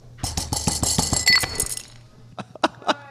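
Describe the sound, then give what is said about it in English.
A rapid burst of heavy thumps as a tabletop is pounded, with rattling, clinking glassware, then a shot glass resting on top of a glass of beer drops into it with a sharp clink and splash, followed by a few slower, separate knocks. “And basically what we're going to do is we're going to pound the table till it falls in.”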